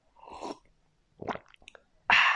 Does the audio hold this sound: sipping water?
yes